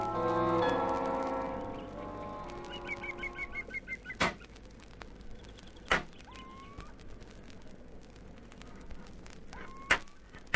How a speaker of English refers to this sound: There it goes again, Biggles. What the dickens is that noise? It sounds like somebody hammering on metal.